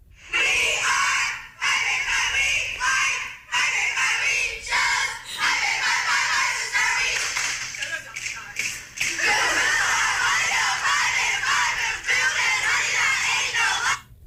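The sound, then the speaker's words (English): A crowd of young women shouting an Alabama sorority rush chant in unison, played from an iPad through a microphone, loud and shrill, almost continuous for the whole stretch with only a few brief breaks between phrases. “So, imagine walking up to a house, knocking on the door, and this is what answers.”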